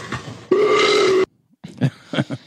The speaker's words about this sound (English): I think she was farting.